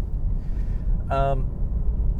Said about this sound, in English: The tires are super square. Oh my God. 19 days sitting on pavement. Ugh. Oh yeah, this car rides really rough too.